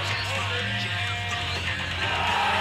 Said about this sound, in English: Just the crowd going insane whenever someone would land something.